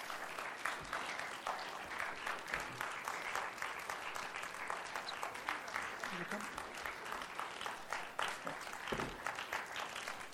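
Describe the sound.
Sustained applause from a crowd as panel members make their way up to the stage, a dense steady patter of many hands clapping, with faint voices mixed underneath.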